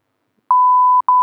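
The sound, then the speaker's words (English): A loud, steady censor bleep tone cuts in after a short silence to cover a person's name in conversation, drops out for a split second, then resumes and holds to the end, with no voice audible. “Yeah, just beep him out.”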